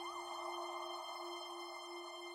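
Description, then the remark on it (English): A faint, distant siren holds a steady, high wailing tone with a slight waver at the start, sounding continuously at an even level throughout, with no voices. “Then, distantly, but steadily growing in volume, sirens.”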